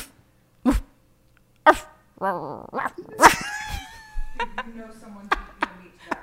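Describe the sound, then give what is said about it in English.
A person imitates a dog: a few sharp, loud barks, then yips and a drawn-out whining whimper, with short gaps between the bursts. “I mean, of course I'm going to make doggy noises too. What are your doggy noises? Let me hear them.”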